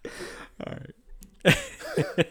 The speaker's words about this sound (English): You're a little burpy over there. You all right? I'm, you know, a little bit. I got a couple burps in me.